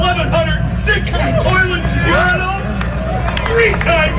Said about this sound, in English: Who's clapping?